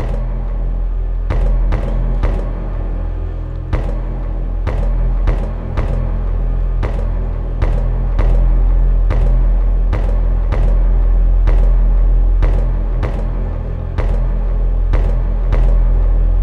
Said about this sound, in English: With the old mic that I was using, when I slammed my desk like this, it made this sweet noise. Whoops. So this is literally just me slamming my desk and the mic picking up all the vibrations.